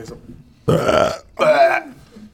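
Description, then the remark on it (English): Two loud burps in quick succession, each a deep, rumbling belch lasting about half a second, separated by a brief pause with no talking. “Remember we talked about the burps last time?”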